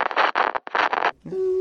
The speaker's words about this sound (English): Yeah, I like that one. Little bird peep.